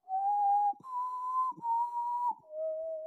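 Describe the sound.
A person whistles the four-note signal melody from The Hunger Games, each note sustained and steady with brief breaks between, fairly loud with no talking.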